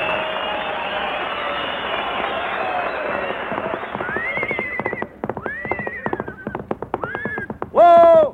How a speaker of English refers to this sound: Oh, what do you think it is? It's a horse, isn't it? Certainly it's a horse.